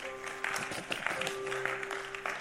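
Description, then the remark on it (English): A church audience, told to stand to their feet, claps together in a dense, continuous wash of overlapping hand claps, fairly loud throughout, with a steady sustained tone humming underneath. “Tonight, put your hands together and stand to your feet.”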